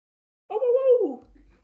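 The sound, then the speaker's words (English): A single voice in a crowd lets out a short, sustained howl, sliding slowly downward in pitch before trailing off, about a second long, with no other talk around it. “Actually, the people in the crowd are making the same noise you just made.”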